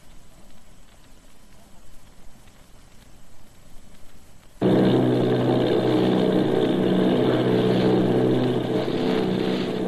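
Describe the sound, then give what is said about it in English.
After a quiet, hissy opening, the heavy drone of the engines of eight Army bomber planes off Bayonne, New Jersey, cuts in abruptly halfway through. It is a thick, steady roar that stays loud until the end. “Army bombing plane V-843 off Bayonne, New Jersey. Lieutenant Bolt commanding 8 bombers, reporting to Commander Fairfax Langham Field.”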